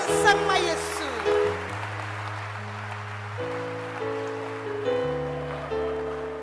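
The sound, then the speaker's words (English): A church audience claps for Jesus in a dense, continuous wash of applause, backed by sustained organ or keyboard chords that shift pitch every second or two. “Clap for Jesus.”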